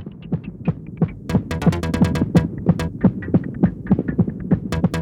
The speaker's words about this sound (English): At this stage, you're starting to hallucinate. Your heartbeat is sporadic and your body is overheating.